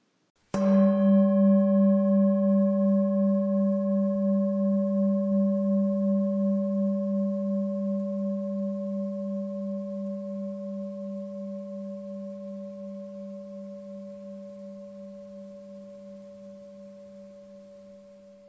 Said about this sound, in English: Okay, are you ready? When I ring the bell, close your eyes and take deep breaths until you no longer hear the lingering sound.